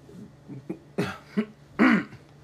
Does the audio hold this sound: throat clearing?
yes